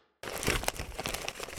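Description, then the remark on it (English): A sheet of paper with notes is snatched and crinkled, a sudden burst of dense crackling that keeps rustling steadily for over a second. “I've been looking for this piece of paper.”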